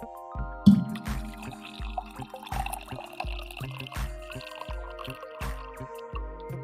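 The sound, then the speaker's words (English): Coffee pours steadily into a cup in the morning, a full, hearty pour with a rhythmic glugging splash and a faint ringing tone that climbs as the cup fills. No one speaks. “Last pour of coffee of the morning.”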